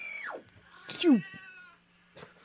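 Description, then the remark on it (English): A cat lets out a drawn-out, falling meow, followed by a second brief, throaty cry, both clear against a quiet room with a faint low hum. “Oh my god, the cat's back in the room.”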